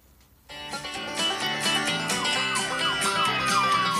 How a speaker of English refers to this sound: If you're listening to this in the car, this is not a real siren. It's going to sound way more real on the radio, but right here I'll play it.